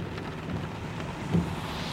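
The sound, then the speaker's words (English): Steady rain hisses under a low rumble of thunder from a big storm at night, with a brief swell of deeper rumbling near the end. The storm is fairly quiet, and nobody speaks. “Sounds like a big storm coming tonight.”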